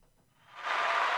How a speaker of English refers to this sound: Can I get that clap again?